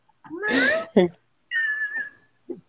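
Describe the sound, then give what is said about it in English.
A cat gives two drawn-out, high, squeaky cries like a creaking door hinge, separated by a short chirp and followed by a brief squeak, fairly loud. “The cat was on cue.”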